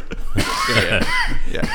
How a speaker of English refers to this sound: coughing, banging on the table here.